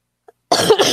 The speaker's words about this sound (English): Now you're coughing. I am. She starts coughing, and then I start coughing. Oh, gosh. Health. This flu sucks, right, guys.